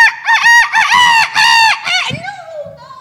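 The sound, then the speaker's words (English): A rooster crows a loud cock-a-doodle-doo in several rising and falling bursts, trailing off into a brief, softer warble at the end. No one speaks. “And Senor Pollo, the rooster, puffs himself up with his coxcomb and his red thing under his neck, whatever they call it.”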